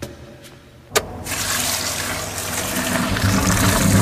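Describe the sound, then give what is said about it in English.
After a brief quiet moment and a sharp click, a loud, steady rush of water surges up and keeps building, gushing and gurgling as floodwater overwhelms the pipe system at a sink. “How could this not be overwhelming our pipe system? It is overwhelming our pipe system. Look at my sink.”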